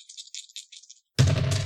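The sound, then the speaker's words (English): Two dice being rolled rattle in a series of quick, bright clicks for about a second, fall briefly silent, then give way to a sudden loud, full-bodied clatter. “And this is still 2 dice, right?”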